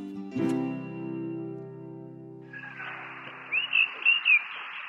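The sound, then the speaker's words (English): Roosters crowing early in the morning at Domaine de Cousignac, an 18th-century home with vineyards in Ardèche: a long, steady, harmonic call comes first, then a hissy wash of background noise with a few short, rising-and-falling cries near the end. No one speaks. “The next day, I wake up early to the sound of roosters crowing.”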